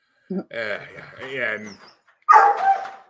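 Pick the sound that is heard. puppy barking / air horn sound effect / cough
puppy barking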